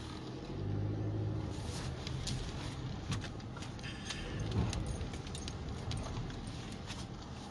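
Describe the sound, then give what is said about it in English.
A car engine, accidentally left running while the driver went into a store, idles with a steady low hum throughout, while keys jingle and rattle in quick, irregular bursts on top of the rumble. “Accidentally left my car running while I went into the store.”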